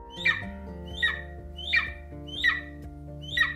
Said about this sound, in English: He hears the eagle calling louder and louder, and Derek realizes he's flying right next to the eagle!